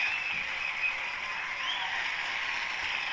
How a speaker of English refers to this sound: Now, and a round of applause there for our beautiful Eben Joseph. She's in the audience there.